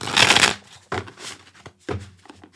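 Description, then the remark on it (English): A Neo Tarot deck by Jericho Mandeburs being shuffled: a long papery riffle followed by two shorter shuffles, each starting with a crisp slap and trailing into soft rustling. No voices. “Let me give us a shuffle.”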